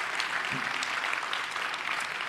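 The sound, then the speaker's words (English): A crowd at a service applauds steadily to welcome newcomers, many hands clapping in a dense, even wash of noise that holds at a constant level throughout, with no voices standing out. “And also, should we just give a quick round of applause to anybody who's new today?”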